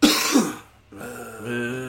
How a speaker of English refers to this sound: I have a cough, I think.